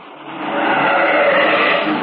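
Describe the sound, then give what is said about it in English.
A car roars off at speed in the rain, splashing water, its engine and tire hiss swelling into a loud, steady rush that holds for a couple of seconds, with no voices. “He staggered to his car, and as he raced away, he splashed water all over a squad car coming toward the house.”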